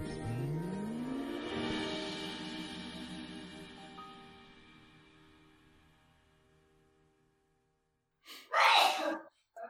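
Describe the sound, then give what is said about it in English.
A single loud sneeze bursts out near the end, following a long stretch of rising, fading whine that dies away into near silence. “Bless you, your mom.”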